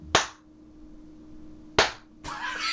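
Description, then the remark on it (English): A person claps out a slow chant-style rhythm, imitating how wrestling fans would clap for Ibushi during a match: two sharp, loud hand claps well apart, then a burst of hissy, clattering noise at the end. No talking. “Well, they're clapping for fucking Sonata, because if they were clapping for Ibushi, it would be like this.”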